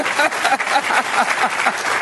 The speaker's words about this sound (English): If you understand what I'm saying, clap your hands, would you?